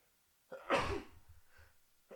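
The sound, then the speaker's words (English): A man sneezes once, loud and sharp, after a brief intake of breath, followed by some fainter rustling and breathy sounds. “At them vaccine sneezes, that's no good.”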